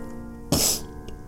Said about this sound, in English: Sorry for the sniffles, you guys. I'm also sick like guys.